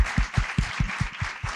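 Applause in a steady, even rhythm, about five claps a second, each with a low thump over a constant bright hiss of clapping. No voices are heard.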